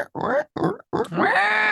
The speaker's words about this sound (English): Squealing, and I look up, and they're like 10 feet away from me. Like a pile of pigs, a bunch of pigs. Like 10 feet away from me.